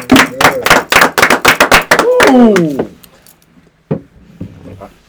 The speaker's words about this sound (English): So let's start off with the Ahmaud Arbery verdicts that we got this week. You know, T ain't here, we can't get the, we clap it up ourselves real quick for that one.